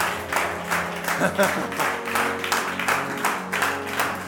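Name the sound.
audience clapping hands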